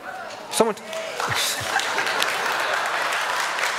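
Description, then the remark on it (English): A church audience whoops once, then breaks into loud, sustained clapping and cheering that holds steady as a dense wash of applause until the end. “I cannot believe I'm in church and you're cheering somebody being mugged.”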